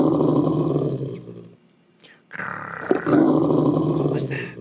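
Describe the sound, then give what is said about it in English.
Two loud bursts of deep, rough growling with a short pause between them, sounding like a person imitating an animal's growl. “And they heard, like, even animalistic growling noises, which is strange.”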